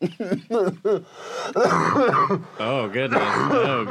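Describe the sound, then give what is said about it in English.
A loud run of short, raspy coughs and throat-clearing bursts from a person who is under the weather comes in quick succession, then rolls into a longer stretch of strained, groaning vocal hacking. “As evidenced by that coughing fit there, but don't worry, I'll wipe off all of the equipment.”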